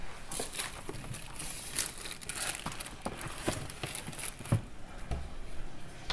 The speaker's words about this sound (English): Oh, you can hear the butter melting, boiling. Turn that down so it isn't too high.